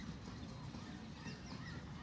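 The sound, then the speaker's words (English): Grackles, big blackbirds, calling faintly, a few scattered squeaky, rising whistles over a steady low outdoor rumble, with no one talking. “what you can hear in the background are grackles”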